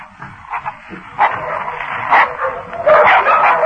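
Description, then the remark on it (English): Dogs bark and snarl in a fierce, continuous frenzy as they attack a man, loud, with harsher bursts of barking breaking through the commotion several times. “Before they arrived, the dogs renewed their attack on Drury.”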